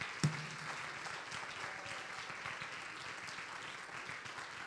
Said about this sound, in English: Come on, somebody, you need to clap your hands unto the Lord.